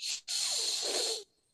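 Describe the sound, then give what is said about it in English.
A person hisses like a snake to push air across a latex reed held on the tongue: a short hiss, a brief gap, then one sustained, breathy hiss lasting about a second, with no talking. “And what I tell people, hiss like a snake. So you're literally going.”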